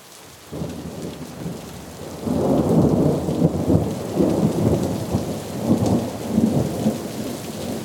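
Heavy rain pours steadily while deep rolls of thunder rumble and swell repeatedly, loud, with no voices present; a very heavy thunderstorm at Clifton Square, coming down from Handsworth.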